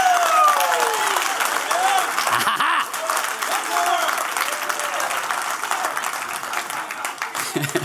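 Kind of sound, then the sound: crowd, audience applause and cheering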